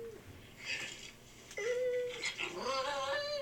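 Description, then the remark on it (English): A female dog's drawn-out howl, recorded on video and played back from a phone, after she was taught to howl that day, with a steady mid-pitched tone that breaks off and then rises again into a longer wavering wail, moderately loud. “I taught her how to howl today.”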